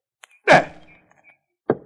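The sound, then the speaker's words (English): Two solid thunks of arrows shot at a target striking it: a loud, full-bodied impact with a short ringing decay, then a second, sharper hit about a second later, with no talking. “will you go over there and get those arrows out of the target?”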